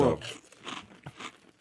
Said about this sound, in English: Do you hear that delicious crunch, y'all?